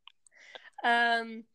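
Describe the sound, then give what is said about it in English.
A few quick tongue clicks from a mouth, followed by a short breathy rustle and a brief voiced hum, like someone making a sound without saying any words. “Don't know why I made that clicking I noise.”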